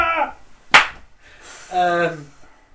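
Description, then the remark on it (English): A single sharp, crisp finger snap, loud and sudden, set between short stretches of a person's voice just before and after it. “Yeah, no, I mean it's just a finger clicking.”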